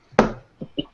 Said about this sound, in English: Two questions. Why was there still knocking even once? I was worried I opened the door wrong.